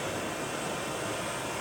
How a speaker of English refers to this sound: The visual inertial odometry, or VIO for short, allows these drones to hold their position, fly in a synchronized path like you see the black ones do right now. They're also flying accurately in and around this obstacle course.